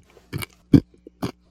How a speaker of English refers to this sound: But let's see what kind of crunch we got going on in this bag of skins.